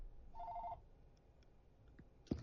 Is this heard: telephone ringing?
yes